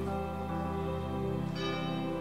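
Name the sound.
bell being rung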